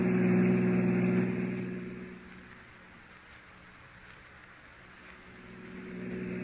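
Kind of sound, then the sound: vehicle, car engine driving fast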